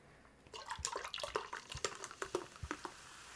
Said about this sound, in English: So I am out of it. So this wine is actually brought to you by Wink, the wine subscription service. Let me tell you a second about Wink. First, let me pour more wine.